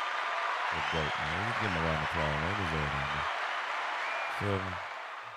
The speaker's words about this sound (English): Hey, can we get a round of applause for Sidney Poitier?